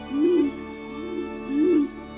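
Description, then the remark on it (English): A fruit dove's low, pulsing hum call: three soft, hollow hoots in a steady rhythm, the middle one quieter, heard clearly with no talking. “Have you heard the pulsing hum of the fruit dove?”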